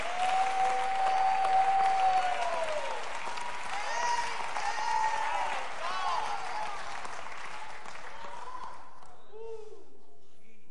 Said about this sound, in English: I wish somebody with a strong voice would shout, forever! Forever! Clap your hands and shout it.